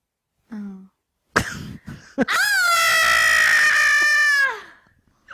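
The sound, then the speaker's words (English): A voice imitates Kevin's scream from the film Home Alone, when he realizes he's home alone: a short high vocal burst, a sharp breath, then one long, loud, harmonically rich shriek held for about two seconds before cutting off. “Can you do an impression of Kevin? You know, when he realizes he's home alone, when he runs up to the camera and does that.”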